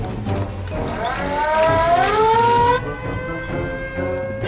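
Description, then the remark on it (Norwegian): The giant alarm in Skinkestad wails with a rising pitch, climbing over a couple of seconds and then holding a steady high tone, loud over a rumbling, noisy background, warning that a giant is in Skinkestad. “Alarmen. Det var ikke oss. Det er kjempealarmen.”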